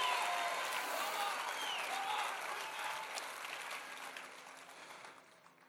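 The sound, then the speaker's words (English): An audience breaks into sustained clapping mixed with scattered shouts and cheers, a dense, fairly loud wash of applause that slowly tapers off over several seconds. “Clap your hands and shout, yes, amen.”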